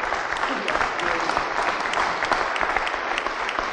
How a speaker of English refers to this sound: Oh, sure, now you clap.